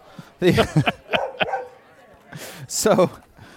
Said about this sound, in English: Really interesting, nothing like dogs in Chicago in the summerish time. At a tap room. So or tap patio. Is this a tap patio? I think that's what this is. Yeah. Stop it. You're going to start a howl.